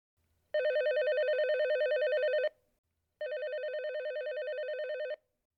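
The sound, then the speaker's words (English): A landline telephone rings twice, each ring a steady warbling trill of about two seconds with a short pause between, loud with no voices. “I'll never forget, I picked up the phone and it was my agent.”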